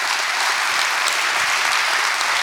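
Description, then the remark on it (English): An audience at a sermon claps for themselves and one another, a dense, continuous wash of many hands applauding at once, loud and even throughout with no voices standing out. “Come on, clap your hands for yourself and somebody else.”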